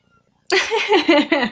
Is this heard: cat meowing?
yes